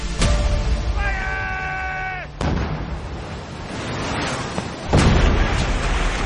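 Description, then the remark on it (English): Heavy cannon booms and sharp musket shots crack through a dense naval battle din among sailing ships in almost no wind, fired at close range, several blasts spaced irregularly, loud and close, with a brief high whistling tone in the middle. “But there was still the mayhem of battle, cannons and muskets being fired at close range.”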